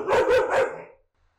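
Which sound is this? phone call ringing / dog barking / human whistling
dog barking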